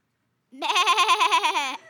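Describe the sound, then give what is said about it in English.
A person imitates a sheep's bleat: one loud, wavering 'baaa' held for about a second with a quick rhythmic quaver, then silence. “She stopped to pet the sheep. The sheep. The sheep that made a sound.”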